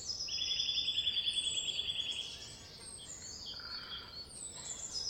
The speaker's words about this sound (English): Is it singing quickly or rapidly? Does it sound cheerful or sad? What do you think that bird looks like? What do you think that bird is doing? What's it doing today? Is it looking for food?